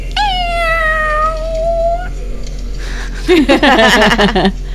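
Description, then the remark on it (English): A cat yowls loudly, first a long steady drawn-out wail, then after a brief pause a rougher, wavering burst of caterwauling with no talking. “Like a monster cat.”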